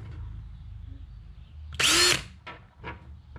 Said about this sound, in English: So what I'm gonna do is I'm gonna drill out a 1/8 hole in these two swim jigs. It's already pretty close, so it doesn't take much to drill it out, but here it goes. Here's number one.